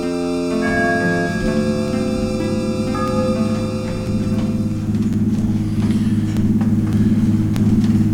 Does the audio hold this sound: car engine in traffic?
yes